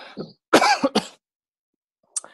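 A short throat clearing followed by a loud burst of two or three harsh coughs, then silence and one last brief cough. No one speaks.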